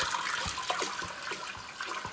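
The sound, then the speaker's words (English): Water pours steadily into a pot, a continuous rushing splash with brief bubbly gurgles breaking through, lasting a couple of seconds with no talking. “And I'm just going to add water.”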